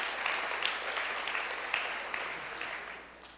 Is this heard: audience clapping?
yes